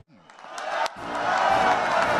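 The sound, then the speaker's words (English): A large, friendly union crowd cheers and shouts to welcome President Biden to his first speech since launching his re-election bid, the noise swelling quickly into a loud, sustained roar of many voices that carries on without a break. “A friendly union crowd welcomed”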